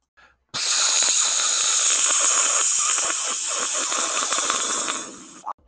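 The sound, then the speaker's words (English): A steady, bright hiss of Claribel's Just for Horses hair colour spray being sprayed on a pony bursts on abruptly, holds strong for about five seconds with slight fluttering, then cuts off sharply. No voices accompany it. “Just spray it on your pony.”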